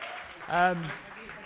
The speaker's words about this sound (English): Just a round of applause for the microphone working.